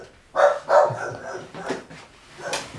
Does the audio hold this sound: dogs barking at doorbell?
yes